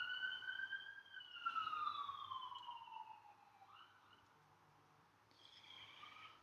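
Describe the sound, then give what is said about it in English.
An emergency vehicle siren wails, its long sweeping tone sliding downward as it passes, fading briefly before another rising wail returns toward the end. No talking. “Whenever I hear sirens, I just need to pause for a second.”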